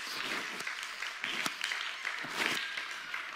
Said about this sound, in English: Come on, somebody put your hands together and clap to the Lord.